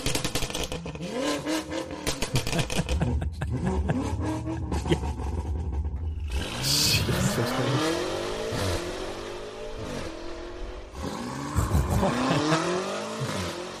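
An 850-horsepower turbocharged race car engine revs and accelerates hard, rising pitch sweeps repeating through several gear changes, loud and continuous with a whooshing turbo whine, no talking.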